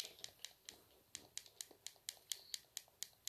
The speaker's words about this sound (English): So I guess we're in this podcast with just us hearing a controller clicking.